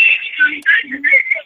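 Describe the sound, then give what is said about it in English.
A caller's radio playing loudly in the background over a phone line, tinny and narrow-toned, with warbling voice-like sounds that run almost continuously and dip briefly twice. “You got your radio going on really loud back there.”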